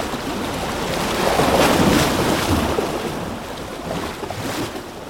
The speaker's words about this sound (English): And as the point of his spear of dark god power strikes the orange light of the cage, the whirlpool caves in all around him, the cold waters crashing down on the hot chains below.